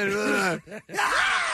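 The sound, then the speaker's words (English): A man, Howard Dean, lets out a loud, excited yell, a long strained cry that breaks off briefly and then surges again, with no words spoken. “All right, so we're going to do that's still a great yell.”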